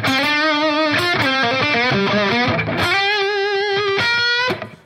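A crunchy, distorted electric guitar plays a bluesy lead line with sustained, wavering bent notes and quick runs, loud and steady, with no voices.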